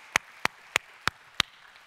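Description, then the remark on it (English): A church audience claps hands in unison in praise to God: five sharp, bright claps in a steady, even rhythm, about three per second, with faint hiss between them and no voices. “Let's give God a hand clap of praise right now.”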